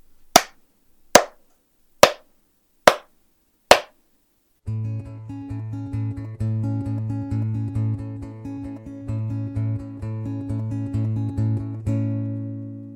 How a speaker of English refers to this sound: Okay, I'll just get 5 claps from you. Okay.